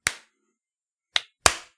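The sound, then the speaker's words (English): Three sharp, loud hand claps with no talking from a group clapping together on a count of three: a single clap, a pause of about a second, then two more in quick succession, so the group falls out of sync. “All right, I'm going to kick it off. Everyone clap.”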